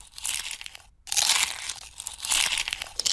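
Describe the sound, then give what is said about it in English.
Dense, crackly crunching of popcorn, caramel corn and kettle corn mixed with the crinkle of a snack bag, a steady rustling texture that briefly cuts out for a moment before resuming loudly, with no talking. “I got snacks. Ooh, I got popcorn. I got caramel corn. I got kettle corn.”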